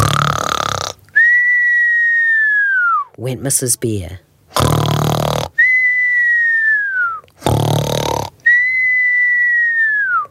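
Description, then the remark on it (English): A voice reading a story aloud imitates Mrs. Bear snoring: three rough, rasping snorts, each followed by a long high whistle that slowly slides down in pitch, with a brief spoken phrase in between. “Mrs. Bear began to snore.”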